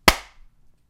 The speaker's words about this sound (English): Clap.